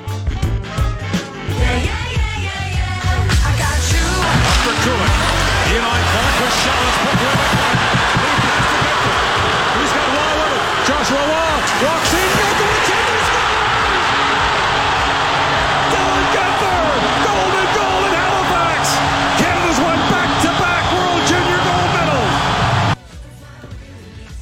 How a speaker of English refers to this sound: I feel like we have to sit in silence and just take in that call for a moment and mostly take in the crowd, because you could barely hear Gord Miller over the absolute madness that was the crowd in Halifax.